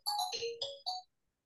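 A phone ringtone chirps out a quick melodic phrase of about four bright electronic notes, fairly loud, then cuts to silence. No one speaks.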